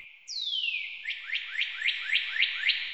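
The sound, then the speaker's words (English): A bright bird-whistle sound effect: one long downward-sliding whistle, then a quick series of about seven rising chirps in a steady rhythm, clear with no talking. “I'm thinking about calling like Twitter talks and then like a bird like whistles or something”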